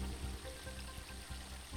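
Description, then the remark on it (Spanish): A steady, hissing rush of brown water spraying out of a mining company's drilled sample hole a few metres above a waterfall, continuous and fairly faint, with a low rumble underneath and no voices. “Pero recientemente la compañía minera perforó una muestra a pocos metros sobre una de las cascadas y ahora rocía agua marrón.”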